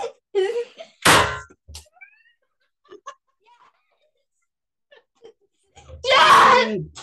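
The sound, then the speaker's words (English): A confetti cannon, twisted counterclockwise at the bottom and pointed up to the sky, fires with one sharp, loud pop. Brief vocal sounds follow, then someone lets out a loud, excited shout near the end. “Yes! Confetti cannon.”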